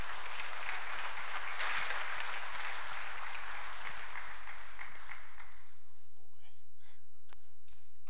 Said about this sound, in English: So just give a round of applause to you guys. I mean, it was awesome.